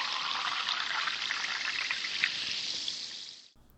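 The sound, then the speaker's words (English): Seltzer pouring steadily into a glass, a continuous fizzing hiss with crackling bubbles that runs for about three and a half seconds, then stops abruptly. No one speaks. “So kick back, siphon heads, pour yourself a cold glass, and let's get started.”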